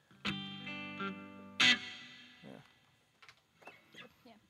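A loud, fuzzy distorted electric guitar chord rings out, followed by a second harsh strum that sustains and fades, then a few faint scattered sounds.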